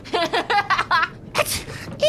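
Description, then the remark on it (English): A voice mimics a sneeze: a quick run of rising, breathy 'ah' gasps builds up, then a sharp, hissy burst releases it, followed by a short trailing vocal sound. Fairly loud. “The camera zooms in, her eyes get wider and wider, and then she sneezes and walks away.”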